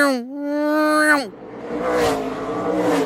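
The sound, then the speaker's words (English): A voice imitates a NASCAR V8 race car engine roaring by: a loud, sustained, buzzing growl that holds steady, then drops off sharply after about a second, followed by breathy, noisy vocal sounds. “So to go to the other extreme, like I'm thinking like NASCAR, and it sounds like...”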